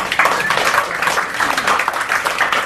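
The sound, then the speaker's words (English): An audience claps and applauds itself steadily for a few seconds, a dense, even wash of many hands with no one speaking over it. “Give yourself a big round of applause.”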